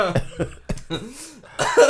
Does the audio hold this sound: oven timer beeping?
no